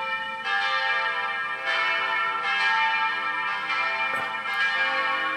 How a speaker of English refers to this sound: Bells. Bells. There should be more bells in our lives.